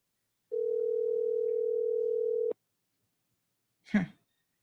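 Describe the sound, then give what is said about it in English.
A single steady telephone ring tone sounds for about two seconds, stops abruptly, and after a short silence a brief clunk follows as a phone call rings out unanswered. “He didn't want to answer his phone this morning.”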